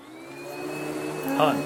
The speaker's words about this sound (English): Hun, turn off the vacuum. Turn it off, what, hun. What? Turn off the Kirby.